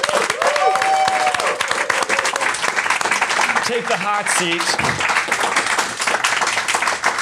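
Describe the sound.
A round of applause: dense, steady clapping fills the whole stretch at high volume, with brief spoken voices and a few whoops rising over it partway through.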